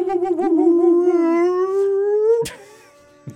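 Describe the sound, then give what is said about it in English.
A single long, loud howl from a howler monkey, wavering at first and then holding a steady, slowly rising tone for about two seconds before cutting off with a sharp knock. “Turn off the lights, light a candle, and welcome to Howler Monkey Corner.”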